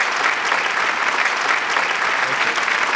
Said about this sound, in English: Enough applause. Stop it. Good Lord. That applause. Yeah, that we got more applause than I think Mark Russell did.